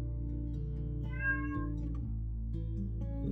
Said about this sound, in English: A cat approaches you, meowing.